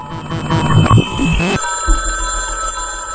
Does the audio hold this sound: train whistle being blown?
no